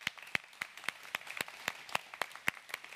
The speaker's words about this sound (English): So, for our first-time guests, we always like to welcome first-time guests with a hand clap. So, welcome.